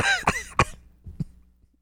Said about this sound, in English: I can't get rid of this cough. I think that you can get rid of it.